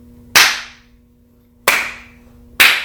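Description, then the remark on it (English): Three sharp, single hand claps ring out at uneven intervals, each crisp with a brief echo trailing off, over a faint steady background hum. “All right, now clap.”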